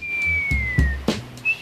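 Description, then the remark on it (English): A person whistles one long, steady note that slowly slides downward, then starts a brief higher note, with soft thumps and low rumbling noises underneath. “Don't whistle about it.”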